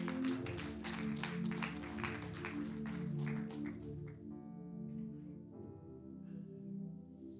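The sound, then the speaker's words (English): A church audience claps their hands in a dense, steady burst for about four seconds, then the clapping thins out and stops while sustained musical tones carry on underneath. “So if you're getting attacked, give yourself a hand clap.”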